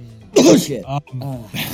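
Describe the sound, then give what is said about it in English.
A single loud, sharp sneeze bursts out, followed by a few brief voiced, speech-like sounds. “Bless you”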